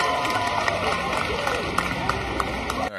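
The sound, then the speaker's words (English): A dense crowd roars continuously, voices hooting and hollering together in a loud, steady wash, with occasional sharp claps or shouts poking through the din before it cuts off abruptly. “It's just a lot of hooting and hollering.”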